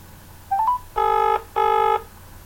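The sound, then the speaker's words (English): A short rising electronic chirp, then two evenly spaced bursts of a buzzy, harmonic phone ring as a caller rings someone back, each lasting under half a second, clear with no talking. “Okay, I'll ring you back.”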